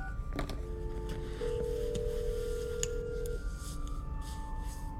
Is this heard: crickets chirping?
no